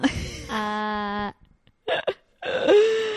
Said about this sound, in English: Oh, boy. So the cat just puked. Good times.